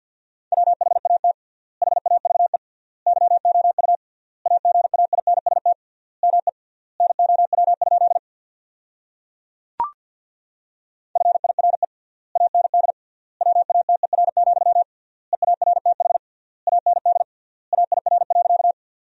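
Rapid Morse code at 50 words per minute with triple word spacing, sending sentences built from the 400 most common words: a single steady mid-pitched tone keyed in fast dots and dashes, grouped into words with long pauses between them, interrupted once by a sharp click.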